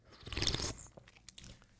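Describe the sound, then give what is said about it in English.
A single slurping sip of a drink, a brief airy gulp lasting about half a second, followed by a few faint mouth clicks and a swallow, with no talking. “Let me give it one more sip.”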